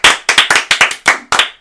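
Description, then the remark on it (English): Brisk, uneven hand clapping from the hosts themselves: a quick string of sharp, bright claps from a few people, fairly loud and with no talking over it. “I think that might be the first applause break on Mr.”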